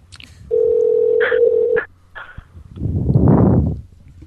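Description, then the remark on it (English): A steady phone dial tone is broken by a few quick telephone keypad beeps as someone dials to call a person back, then a second of rushing, staticky noise follows. No voices are heard. “Well, she deserves a call back.”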